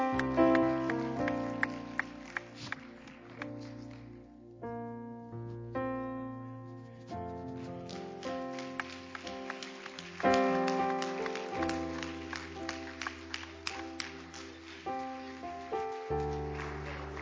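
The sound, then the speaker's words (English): An audience claps steadily, a dense patter of many hands, over sustained organ or keyboard chords that shift throughout and swell louder near the middle. “Let's give … a hand clap.”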